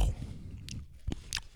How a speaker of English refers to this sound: He is currently eating a Rice Krispie treat. Listen to every single crunch that he has.